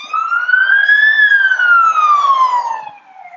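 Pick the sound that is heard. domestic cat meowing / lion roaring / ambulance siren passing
ambulance siren passing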